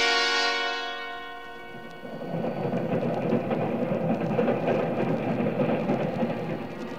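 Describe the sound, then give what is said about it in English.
A sustained tone with rich harmonics fades away over the first two seconds, giving way to the steady, dull, monotonous roar and rumble of a riding train, with no voices. “The sound was a dull, monotonous roar in my ears, and I listened, wondering if it were real or part of a dream.”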